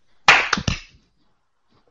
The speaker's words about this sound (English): All right. We're going to do a 3, 2, 1 clap. Ready?